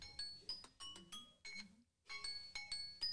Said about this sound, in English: That's such a cute ringtone. That was the timer. It is so cute. It is so cute. Her timer just went off. She's timing us.